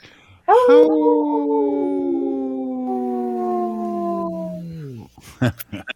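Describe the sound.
A person gives one long, loud wolf-like howl lasting about four seconds, holding steady before sliding down at the end, followed by a few brief vocal sounds.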